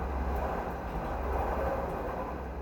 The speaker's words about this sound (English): They've got a nice little front patio right on the street, so you're going to hear a little bit of car and congestion for that.